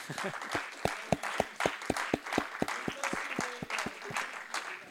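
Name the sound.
audience clapping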